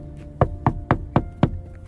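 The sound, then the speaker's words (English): Five firm, evenly spaced knocks on a wooden door, fairly loud, each a short dull thud in a quick steady rhythm, with no voices. “Well, okay, maybe let's, I don't know, let's knock on the door.”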